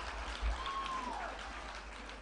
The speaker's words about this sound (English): Clap hands for Jesus. Clap hands for Jesus.